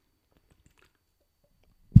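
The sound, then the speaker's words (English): Near silence with faint mouth noises, then a sudden loud, wet sip and gulp of hazy IPA beer right at the end. No one speaks. “Let me have a quick sip-a-roo and then we'll get into Father's Day because it was a lovely day.”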